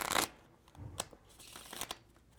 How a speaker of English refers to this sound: All right, I'm gonna cut it back into the deck. Shuffle the cards.